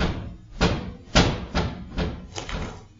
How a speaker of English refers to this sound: It was like probably 3 or 4 doors that all slammed right in a row, and you can just hear bang, bang, bang, bang, bang, getting closer to the recording.